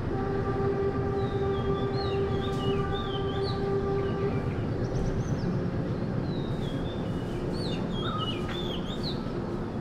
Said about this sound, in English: We arrived in the town of Ella, which, apart from having one of the most beautiful views on the island, also had an old slow train crawling on antique rails through a reverberant valley.